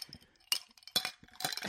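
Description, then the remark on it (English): Glasses of Shirley Temple drinks clink together in a toast, several bright, ringing taps in quick succession, with faint rustling in between and no speech. “So cheers, guys.”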